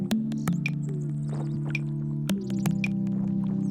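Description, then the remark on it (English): Mud from a thawing permafrost cliff drips and plops at an irregular pace into thawed mud at the cliff's base, several sharp wet drops falling over a steady low droning hum, with no voices. “So there's a constant drip, drip, or plop, plop of mud that falls down into the thawed ground.”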